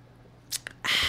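Two people sip Pinot Gris wine from glasses: two quick soft wet slurps, then a longer airy slurp, with no talking.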